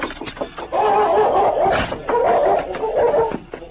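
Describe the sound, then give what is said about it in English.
A powerful dog barks and growls in two long, strained bursts as it pulls against the chain holding it outside a house, with scuffling noise in between and no talking. “Outside the house, the powerful dog pulled against the chain that held him.”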